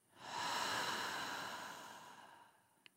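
A single slow, deep breath taken during mindful breathing, a long airy exhale that swells quickly and fades gradually, with no talking, ending in a tiny click.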